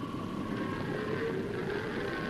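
A thundering stampede of longhorn cattle heading toward Silver Basin in a Lone Ranger radio drama: a dense, continuous low rumble with a faint hum on top, holding steady and loud throughout, with no voices.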